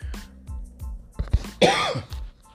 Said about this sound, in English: I swear I don't have the corona, but you know, it's just coughing.